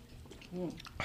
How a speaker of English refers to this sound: All right, we're going to cheer. They're taking a shot and I'm going to take a big sip of my twisted tea. Let's go. Okay, cheers.